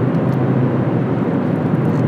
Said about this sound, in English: For those of you playing along at home, I'm on Highway 13, driving north from Washburn, Wisconsin, towards Bayfield, Wisconsin.